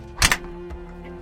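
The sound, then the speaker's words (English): The outer door of a double set of doors leading into a recording area swings shut with a solid thunk and a brief rattle of the latch, followed by a quieter knock and then a low, steady hum. “So we come in this way and we come on in here and we shut the outer door.”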